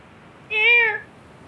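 A single meow from Gerald, a pet cat, drawn out for about half a second with a slightly falling pitch, heard from a distance at the top of a building, the cat seemingly fighting with something, clear against a quiet background with no talking.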